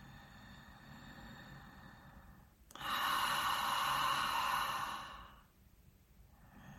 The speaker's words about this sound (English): Taking 3 deep, conscious breaths in through your nose and out through your mouth.